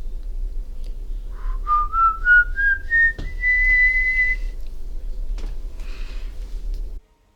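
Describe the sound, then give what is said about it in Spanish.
An eerie whistle of the Silbón climbs slowly in wavering, stepwise glides before holding a long high note, then fades, heard over a low, steady rumbling background with no one speaking. “Pero, cuando es difícil escuchar el silbato, el silbón está al punto de atacar.”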